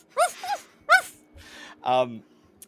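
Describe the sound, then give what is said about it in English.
A person vocally imitates high-pitched dog barking: three quick yappy yips in a row, then a breathy noise and a final longer, lower bark-like yelp, fairly loud. “Like, as you continue walking through, you hear, in the distance ahead of you, very high-pitched barking.”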